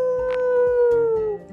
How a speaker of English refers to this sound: let out a big howl, but no response.